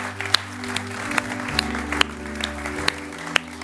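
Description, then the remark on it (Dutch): An audience claps steadily, with a dense wash of hand claps and a few sharper, louder ones standing out, all over a low steady hum. “Laten we ze een applaus geven.”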